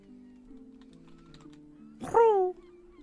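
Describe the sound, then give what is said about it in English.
A pigeon coos in low, steady droning tones, then lets out a louder, sharper call that falls in pitch near the end. No one speaks. “The pigeon coos.”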